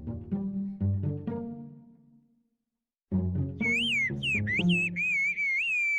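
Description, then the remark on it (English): Loud, piercing Turkish whistled language from the village of Kuşköy, used for conversations over long distances, with sliding, rising and falling tones in several short phrases, heard after a pause, with low tonal music-like sounds running underneath. “It allows complex conversations over long distances without using words.”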